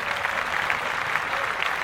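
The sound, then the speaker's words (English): Steady applause of many hands clapping, a dense crackling wash of claps at an even, fairly loud level that holds for about two seconds with no voices on top. “Let's clap that up.”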